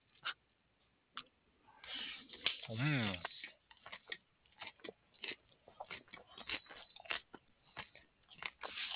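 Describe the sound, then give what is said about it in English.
Crunchy biting and chewing of taco salad, a steady run of sharp, irregular crunches, with a brief muffled vocal sound early on. “I'm going to take a bite out of this taco salad.”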